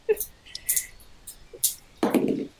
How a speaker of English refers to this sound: I'm only going to roll one dice on this.